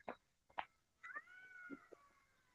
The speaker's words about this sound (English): Oh, that awful sound. There's like a... You hear that? Is it a cat?